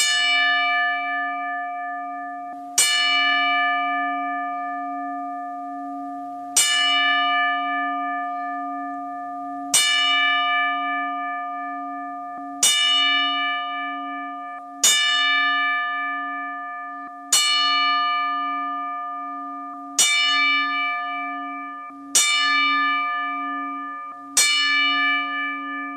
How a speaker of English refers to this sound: We'll be right back after the 10 bell salute.